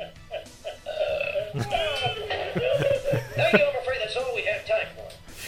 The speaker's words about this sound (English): And then Barney burps and falls over. Wait, let me see if that's in the clip.